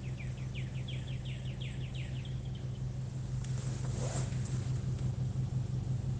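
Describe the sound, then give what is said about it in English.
A truck engine idles outside a window with a steady, low rumbling drone that continues throughout, while a bird chirps in a quick repeated series during the first few seconds. “When do you think the toxins from the tailpipe of that truck are going to reach my window over here?”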